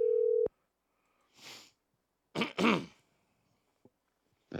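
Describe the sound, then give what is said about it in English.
A loud, steady telephone dial tone sounds for about half a second and cuts off as a phone number is called, followed by quiet and a few rough throat-clearing or coughing bursts. “Let's call …. Call that number.”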